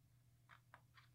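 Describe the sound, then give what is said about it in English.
Three soft, crunchy bites in steady rhythm, someone chewing on a drumstick, over a low, constant hum, with no talking. “Homie's just chewing on a drumstick after who knows what was going on with all these honeys in bed.”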